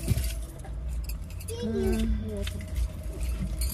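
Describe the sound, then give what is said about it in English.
Metal keys jingle and rattle in short, scattered bursts over a low rumbling background, with a faint voice-like hum murmuring underneath. “I always want to know where he think he going with them keys.”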